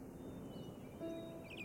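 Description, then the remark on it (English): Soft birdsong from the trees: a few faint high chirps drift in over a low, steady outdoor hum, quiet and gentle, with no voices present. “The gentle sound of birds came from the trees behind Anna.”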